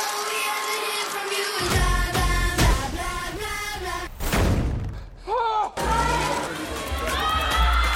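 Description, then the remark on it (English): A crowd of fans on the red carpet at the New York premiere of the Netflix movie Six Underground yells and cheers loudly and continuously, many overlapping voices shouting at once, with a few dull thumps breaking through the din. “Are you the Ryan they're yelling about?”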